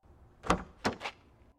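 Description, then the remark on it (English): A car door clicks open as someone jumps out of the car at a shop, then two quick solid thumps follow as it swings shut, fairly loud against a quiet background. “Mark jumped out of the car and ran into the shop.”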